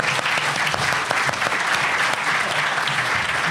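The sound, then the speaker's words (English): Sustained audience applause fills the room, a dense wash of many hands clapping at steady loudness throughout, with no talking over it. “Round of applause”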